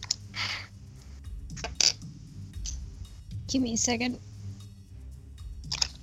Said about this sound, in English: Picking through all my dice. Looking for the sleepiest dice. The sleepiest dice.